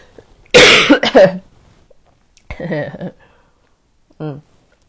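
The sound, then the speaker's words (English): A loud, harsh cough bursts out, followed by a rougher throat-clearing sound and then a short, softer clearing of the throat after a pause. “Unfortunately, it's not because I've been singing too much; it's because I've been coughing too much.”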